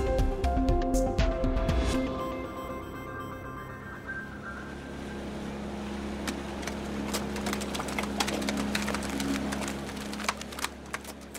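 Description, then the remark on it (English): Fish flop and slap against the deck of a Malaysian fishing boat after a successful day at sea, in quick, irregular bursts of wet thuds, layered over a steady low engine hum, with no voices. “Fish flopping on ship decks after a successful day at sea.”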